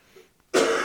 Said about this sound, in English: Hang on. 1 second. Let me cough.